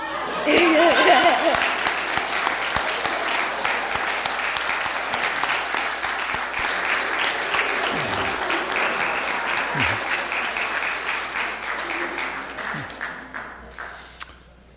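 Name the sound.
audience clapping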